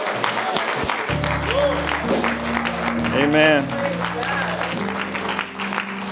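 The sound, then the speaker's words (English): An audience at Faith Family Church bursts into sustained applause and cheering, a dense wash of clapping with rising shouts and whoops over a low steady organ-like drone, and a voice speaks briefly. “If you're done with your golf clap, give God a real praise.”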